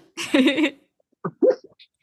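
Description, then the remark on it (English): A short, buzzy fart sound effect sputters for about half a second, followed by a couple of brief, quieter vocal bursts like stifled laughs. “It's never a bad time for a fart sound.”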